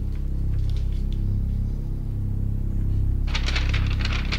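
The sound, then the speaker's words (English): Thin paper crinkles in short, crackling bursts, faint at first and then louder and denser near the end, over a steady low ambient music drone. “Flimsy paper.”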